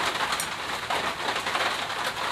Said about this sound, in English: I know y'all hear it raining, but it's all good. Y'all need to hear me. Don't worry about the rain.